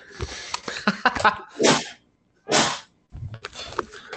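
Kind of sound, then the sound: human body sound, a sneeze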